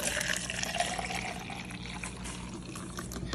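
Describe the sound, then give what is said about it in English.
Liquid pours steadily from one cup into a larger cup, a continuous splashing trickle with a rising filling tone, no voices present. “And we'll pour it back into the small amount.”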